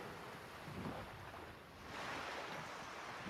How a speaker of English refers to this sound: It's really loud water, too. You hear that? Why is that so loud?